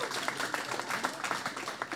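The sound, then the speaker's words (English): A church audience gives itself a hand for raising $350,000 toward a future permanent space, clapping in dense, steady applause, a continuous patter of many overlapping claps at moderate loudness with faint voices mixed underneath. “That's giving yourselves a hand clap.”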